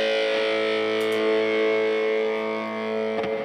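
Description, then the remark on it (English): A distorted electric guitar chord, played through a 1981 Inventions DRV pedal with reverb added, rings out and sustains with a washy, effects-laden tone, lingering with reverb. A couple of soft pick scrapes are audible near the start and end. “You want to give me a little reverb?”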